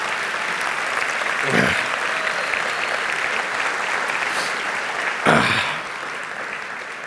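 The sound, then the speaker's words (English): A crowd applauds steadily one more time for a group of young people standing on stage, a dense wash of clapping that holds at an even level throughout, with a couple of brief swells and a few whoops rising above it. “And so can we give a round of applause one more time for these young guys?”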